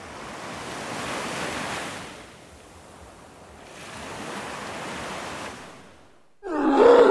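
Ocean waves surge in and wash back out twice in slow, hissing, steady swells before a sudden louder burst of sound cuts in at the very end.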